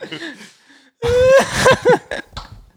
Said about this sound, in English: I just farted into the microphone, guys. Felt it coming. You literally turned around and stood on the fucking chair to do that.